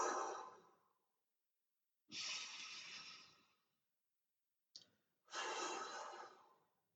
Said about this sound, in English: A big deep breath in through the nose and out through the mouth. Feel free to make noise if that feels the most comfortable. In through the nose and out through the mouth.